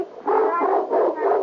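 A Doberman Pinscher, a gift from the National Kennel Club, gives two or three drawn-out, throaty barks, loud and almost howling, with no one talking over them.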